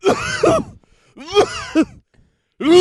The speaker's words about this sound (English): You all right, man? Such a cough. Are you sure you should be coming into work today in your condition?